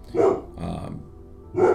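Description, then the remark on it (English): A dog named Oliver barks in two loud, gruff bursts separated by a lower rumbling growl, with no talking around it. “Oliver, barking.”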